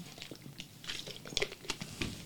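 Quiet crackling and crinkling of a plastic water bottle as someone drinks water from it, with a scatter of sharp, irregular crunchy pops and soft rustles over about two seconds, and no voices.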